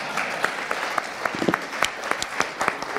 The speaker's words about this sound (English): He definitely needs a round of applause.